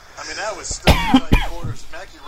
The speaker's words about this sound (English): I'm still here dealing with the cough, but I think for the most part I'm doing a lot better than I was the last few weeks.